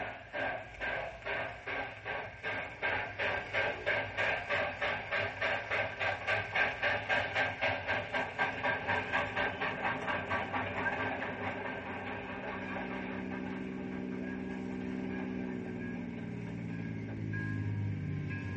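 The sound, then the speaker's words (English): The morning southbound train, with a caboose, pulls away on the rails, its rhythmic chugging and clattering steady at first, then gradually easing and shifting lower as it moves off. “He's in the caboose of the morning southbound.”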